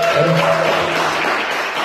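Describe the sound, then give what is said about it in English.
A burst of audience applause for a guest's parents in the crowd, steady and fairly loud throughout, with a brief tonal hum or cheer underneath in the first half before the clapping carries on alone. “Give it up for her parents.”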